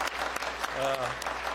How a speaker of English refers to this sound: I think at this time we need to give her a good round of applause for all of her years of service.